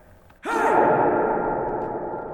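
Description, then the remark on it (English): A voice calls out once in a large cavern, the sound smearing into a long, airy echo that lingers and slowly fades. No words can be made out. “It sounds like it's coming from your left and your right.”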